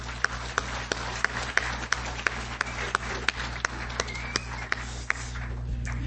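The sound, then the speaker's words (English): An audience applauds steadily for the company Enhanced Vision, a dense wash of clapping with a few sharper claps popping out at a regular pace, sustained throughout with no talking. “And let's give them a great round of applause for that.”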